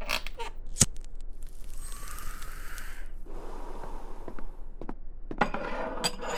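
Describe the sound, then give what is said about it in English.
Sharp glass clinks ring out at the start and again near the end, with a steady splashing pour of scotch into a glass in between, moderately loud, with no talking. “Maybe an extra glass for some of that scotch.”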